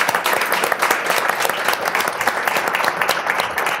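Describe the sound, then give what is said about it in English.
A crowd applauds an executive producer steadily, many hands clapping in a dense, continuous patter that stays loud and even throughout without fading. “Can we please give him a round of applause?”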